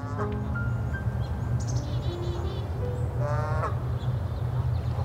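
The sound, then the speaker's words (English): Several birds call in Sapsucker Woods over a steady low rumble, with harsh, crow-like caws and brief tonal chirps scattered across the stretch. “We went back out to Sapsucker Woods to listen to the birds”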